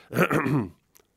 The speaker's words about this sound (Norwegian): Jeg tror han kremter. Det står ikke kremt her, men jeg tror han kremter.